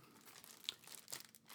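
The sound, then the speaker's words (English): Soft crinkling of paper as a gift is unwrapped, with scattered crisp crackles and a couple of sharper snaps, fairly quiet and with no voices. “It seems like paper.”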